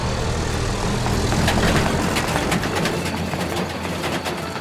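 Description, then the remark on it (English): A mission truck's engine rumbles steadily as it drives along a bumpy road, with intermittent rattles and clunks breaking through the constant low drone. “They all climbed in, the engine roared to life, and soon the little rescue team was bouncing this way and that as the truck made its way along the bumpy road.”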